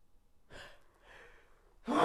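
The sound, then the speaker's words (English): A couple of breathy, rising inhales build up, then a sudden loud, explosive sneeze bursts out at the very end. No one talks. “Bless you.”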